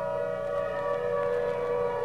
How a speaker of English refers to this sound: Walking home from the supermarket, Nye hears the distant song of the fire siren.